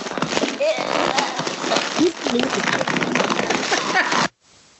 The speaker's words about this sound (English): Still can't hear you. I think when you play with a balloon, it does something to your audio.